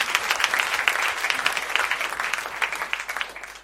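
A crowd applauds a bass player steadily, a dense patter of many hands clapping at once, holding a fairly even loudness for a few seconds with no voices standing out.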